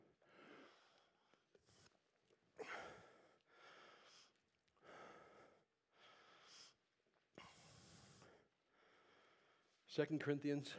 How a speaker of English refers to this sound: Sorry for breathing heavy into the mic. Maybe we won't have this recorded online. There's too much huffing and puffing.